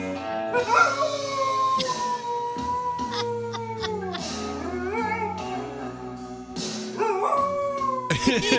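A dog in an Instagram video howls along to a slow song, its long, wavering, sliding notes rising and falling over the music, loud, with brief pauses between howls.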